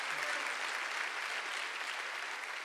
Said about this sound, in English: Come on, can we give a huge round of applause to those who serve in this body? Thank you.